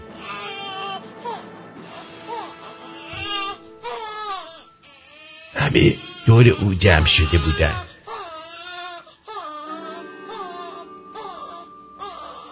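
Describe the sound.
A voice wails and sobs in drawn-out, high, baby-like cries, fairly loud, peaking in a harsh burst midway, with brief spoken words mixed in.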